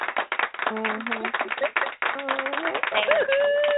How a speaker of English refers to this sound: I got to give you some applause just a little bit.